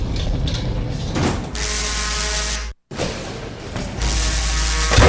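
A loud transition sound effect, inserted by the show's editor to lead into an informal lightning round: dense, ratcheting mechanical whirring and clattering that cuts out for a split second midway, then surges back even fuller. No one speaks over it.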